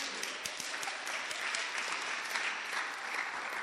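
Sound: audience applause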